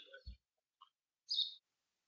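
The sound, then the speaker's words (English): A few short, high bird chirps sound in sparse bursts, one stronger tweet near the end, with a soft low thump early on and silence between calls. “There were a lot of chirping birdies and big hammers going and bursts of club music during our show”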